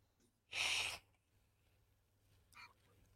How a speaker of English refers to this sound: Damn, dude. It almost sounds like you're doing a bump or something. I know you're blowing your nose, but goddamn, it almost sounds like you're snorting.